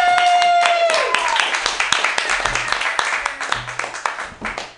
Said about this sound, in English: Hey, everybody, clap your hands for your next comedian